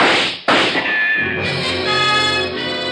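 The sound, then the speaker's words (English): Two sharp, loud gunshots from a gun barrel behind a picture on the wall crack in quick succession, slugs thudding into a rug, followed by a sustained ringing, tonal drone that carries on without any voices. “The slugs tear into the rug beside us.”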